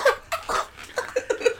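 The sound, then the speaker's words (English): A voice imitates coughing in a mocking, exaggerated way, mimicking Moaning Myrtle mocking Harry as he comes out of the water coughing: a quick run of short, voiced cough-like bursts, moderately loud, sounding almost like giggling. “We're not going to talk about the most amazing acting moment that Moaning Myrtle has when Harry comes out of the water coughing and she mocks him.”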